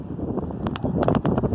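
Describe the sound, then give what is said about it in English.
Wind gusts buffet the microphone at the Philadelphia Premium Outlets on Sunday, March 1st, in a steady, rumbling roar, with louder bursts of crackling distortion breaking through near the middle and end. No one speaks. “Very windy.”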